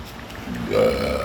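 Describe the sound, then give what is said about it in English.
A single loud, drawn-out burp erupts, rising in the second half with a raspy, resonant tone and no talking over it. “Burp.”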